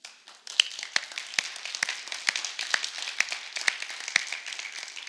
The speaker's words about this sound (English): Our production team, did you guys look back at them and just clap for them?